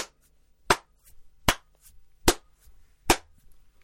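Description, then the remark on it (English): Four sharp, loud hand claps, given after a song, ring out alone at a slow, steady pace, each one a crisp, bright smack with brief quiet between them. “I've got a loud clap sometimes, right? So after one of the songs, I start clapping like this.”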